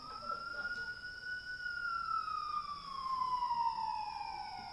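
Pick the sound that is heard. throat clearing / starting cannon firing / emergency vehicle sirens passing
emergency vehicle sirens passing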